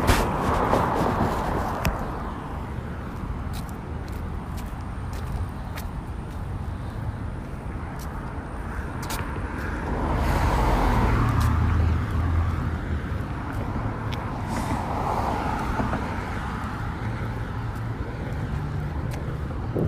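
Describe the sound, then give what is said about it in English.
A bus rumbles along a road, its low engine drone swelling as it draws near midway through and easing off again over steady traffic and wind noise. No one speaks. “Yes, I missed that bus.”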